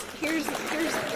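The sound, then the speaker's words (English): A short burst of sound-effect clapping applause starts abruptly and holds steady, a dense crackle of many hands with a voice-like tone rising and falling on top. “Where the clap? Hit it with the clap.”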